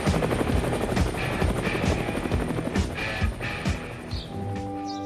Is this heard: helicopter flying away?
yes